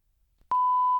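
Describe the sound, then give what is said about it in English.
After a moment of near silence, a single loud, steady electronic beep starts abruptly and holds one pure pitch for about half a second before cutting off. “Now, here's actually the, get ready with your beep again.”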